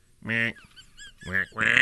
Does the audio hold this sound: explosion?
no